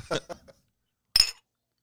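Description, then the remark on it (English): Whiskey glasses holding Revel Stoke Roasted Apple Whiskey clink together in a toast: brief clattering at first, then a pause and one sharp, bright clink with a short ringing tone, fairly loud. “It is time for another round of Revel Stroke Roasted Apple Whiskey. There you go.”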